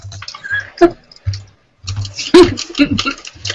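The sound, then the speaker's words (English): Someone crunches a crunchy snack close to the microphone: a run of sharp, irregular crackly bites with brief pauses, loud and clicky enough to resemble typing. “No, that's the crunch, I think.”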